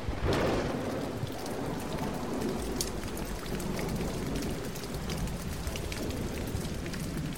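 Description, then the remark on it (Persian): Heavy rain pours down in a dense, continuous hiss, with a deep rumble of thunder rolling underneath, most noticeable at the start. There are no voices. “در نهایت به فرمان خداوند باران متوقف میشه و آبی که روی زمین رو گرفته بوده فرو میره”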